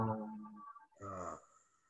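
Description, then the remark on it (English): Two deep, voiced breaths out through the mouth, fairly loud, after deep breaths in through the nose during a guided breathing exercise: a long, sighing exhale, a brief pause, then a shorter one trailing off into quiet. “And just breathing in deep through your nose, breathing deep down, expanding out your gut, and then breathing out through your mouth, making the sound.”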